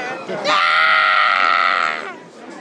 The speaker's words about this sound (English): You're not supposed to scream anymore.